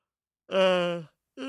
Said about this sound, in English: Yawning, guys. I don't know why I keep doing it.